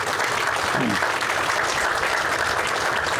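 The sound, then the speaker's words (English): A crowd applauds steadily at an airport event, with dense, even clapping that holds at a consistent loudness for a few seconds, without speech on top. The applause honors Lee Metcalf, the former airport director. “Let's give Lee a round of applause.”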